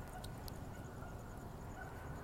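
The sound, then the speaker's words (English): A dog barks a few times, its hoarse, honking calls sounding much like a goose, over a steady background of low rumbling noise. “Is that a goose I hear? Sounds like a goose.”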